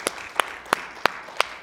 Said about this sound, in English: Let's give him one more hand clap if you wouldn't mind, please.